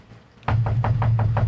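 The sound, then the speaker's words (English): A rapid, steady series of about six loud knocks begins abruptly after a short silence, each hit ringing over a deep, booming bass rumble that sustains underneath. “It's a weird knock. It's got like some bass reverb or something.”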